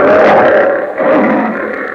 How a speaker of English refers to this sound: As the lion says...